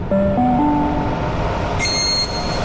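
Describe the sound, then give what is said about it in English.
A train rumbles at a platform in Sydney, its motor whine stepping upward in pitch, then a bright high-pitched chime or whistle sounds briefly near the end. No one speaks. “First stop, the train on platform.”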